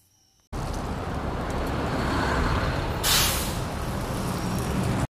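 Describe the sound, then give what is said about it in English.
A loud, steady hiss of bus air brakes rushes in abruptly and holds for several seconds, with a sharper burst of released air partway through before it cuts off. “To finish the day, I and my family took the bus to home.”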